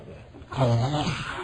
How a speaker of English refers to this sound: You are yawning.